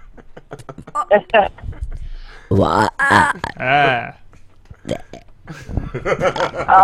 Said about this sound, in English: Why do you burp talk a little?